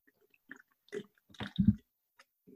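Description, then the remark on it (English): Close-miked wet mouth sounds of someone chugging a drink: a few slurps and gulps, with a loud, deep swallow near the middle and quiet pauses between. No talking. “Let me take a little chug here because this has to be official.”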